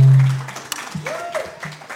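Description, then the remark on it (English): An audience claps steadily for about two seconds, a dense crackle of many hands, with a low hum at the start and a brief rising whoop from the crowd partway through. “Big round of applause for Mia.”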